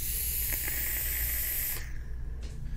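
A steady airy hiss from a vape inhalation runs for nearly two seconds, then cuts off abruptly, leaving a low constant hum with a couple of faint clicks.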